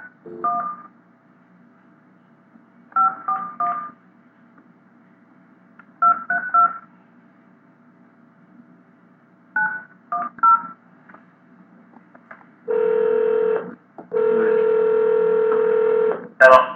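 Touch-tone beeps dial a prize winner's phone number in several quick clusters with pauses between, followed by two long, steady buzzing ring tones on the line; no one speaks.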